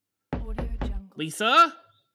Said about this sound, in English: they're knocking. What? I hear a knock on the door